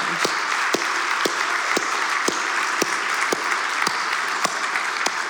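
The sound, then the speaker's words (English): Steady audience applause at a Redemption church service on Baptism Sunday, a dense bright wash of clapping with sharper individual claps popping out at a roughly regular beat, like some people clapping in rhythm. “Can we give one more round of applause to all the...”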